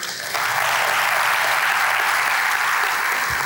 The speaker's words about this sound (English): Clap if you're with me.